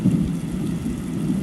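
Steady rain pours down with a deep, continuous rumble of thunder underneath, a dense, unbroken storm sound that stays loud and even throughout, with no voices.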